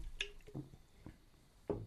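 A few soft, wet slurping and gulping sounds spaced out over a couple of seconds, like someone taking a sip of a drink, with no talking.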